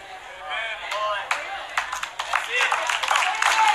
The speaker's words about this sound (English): You see them claps? It's like... okay. Oh, wow.